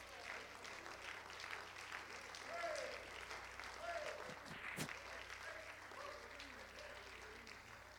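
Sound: audience clapping hands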